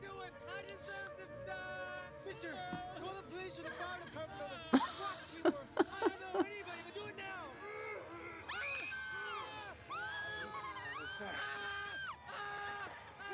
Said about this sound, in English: You have a very good scream. I love it.